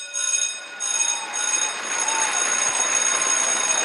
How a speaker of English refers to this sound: And this week's celebratory sound, five school bells in honor of school letting out for most kids, I think, across the Triangle right around this time. So five school bell rings to celebrate five new closings for A. Cole Realty and team.